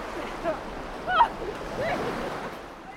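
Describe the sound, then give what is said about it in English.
Sea waves wash steadily onto the shore in a continuous soft rush, with a couple of brief swells. Faint, indistinct voices sit in the background. “I've had the caravan on Anglesey for 5 years and I've never once come in the sea.”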